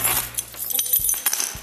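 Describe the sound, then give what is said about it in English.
A bunch of keys jangles, a bright metallic clinking that comes in a few quick shakes with small taps between, no voices. “Have you got the keys? Yes.”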